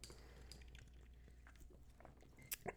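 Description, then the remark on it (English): A quiet sip of water: near-silence with a low background hum, then a couple of brief wet mouth clicks and a small gulp near the end. No one speaks. “Sorry, I needed to take a sip of water.”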